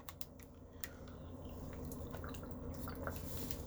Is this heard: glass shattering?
no